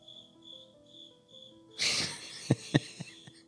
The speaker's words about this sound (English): And just so everybody knows, I did not put the cricket noise. I guess the cricket thinks we're boring. Someone thinks we're boring.